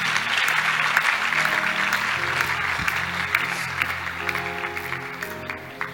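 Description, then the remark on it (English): A large crowd applauds steadily and loudly for several seconds, the dense clapping filling the room, with low sustained musical tones humming underneath. “Clap for her for me.”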